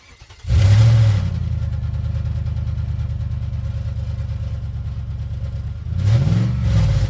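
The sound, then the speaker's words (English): A car engine cranks to life, then settles into a steady, rumbling idle before a second throaty rev swells near the end. “And that is the engine, of course, of the Limerick naysayers starting up and getting ready ahead of the weekend.”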